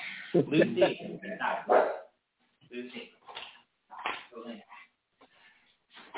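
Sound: dog barking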